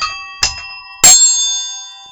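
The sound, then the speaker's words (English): A triangle is struck twice, a soft tap followed by a louder, brighter hit, its shimmering metallic ring sustaining and slowly fading. Clear, with no voices. “With triangle. And a triangle.”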